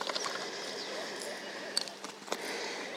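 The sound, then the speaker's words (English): A small plastic watercolour palette case clicks open, with a couple of light snapping clicks and a soft rattle against a steady background hiss. “Then I'm going to now open up my watercolours.”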